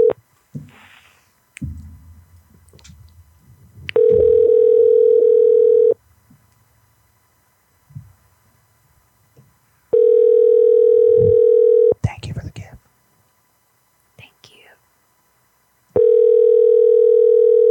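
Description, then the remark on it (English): An outgoing phone call rings on the line: three loud, steady two-second ringback tones separated by long silent gaps, with faint rustling and murmured voices in the pauses and nobody picking up. “Why does he not answer his phone?”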